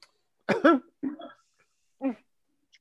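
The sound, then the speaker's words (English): A series of short, affected coughs from a woman: a quick double cough, then a throaty clearing, then a single higher cough after a pause. Fairly loud, with no talking. “That bougie, stuck up, I'm better than you fucking cough.”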